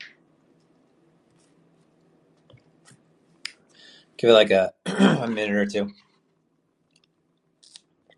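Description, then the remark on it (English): Soft chewing sounds of someone eating mango as a snack, with a few faint mouth clicks, followed by a person speaking briefly before it quiets again. “Excuse my chewing in the background. I love mango.”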